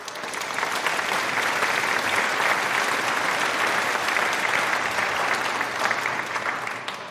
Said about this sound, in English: We all clapped as Bonnie reached behind the curtain and triggered canned applause over the PA system.